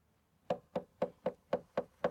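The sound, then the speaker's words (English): Seven quick, evenly spaced knocks by a neighboring rancher on a wooden door, steady in rhythm, after a brief moment of quiet, with no voices. “He opens the door to one of the neighboring ranchers”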